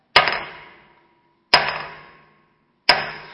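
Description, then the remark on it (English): Three sharp, ringing blows of a 3-pound crossbeam hammer on hard rock as someone tries to break it, evenly spaced about a second and a half apart, each a bright metallic crack that decays quickly, with no talking. “So here's the thing, a rock is kind of hard to break, right? You notice I'm having a hard time breaking it.”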